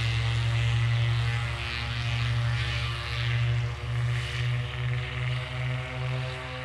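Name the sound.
propeller plane taking off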